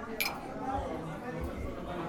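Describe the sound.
At an American cocktail party, a steady murmur of many overlapping voices is broken twice by bright, high clinks of glasses, one early and one past the midpoint.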